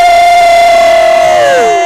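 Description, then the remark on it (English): An audience lets out a loud, sustained shout for the woman of God, held on one steady pitch, sliding downward and fading as it ends, with no other sounds alongside it. “Give a better shout to the woman of God.”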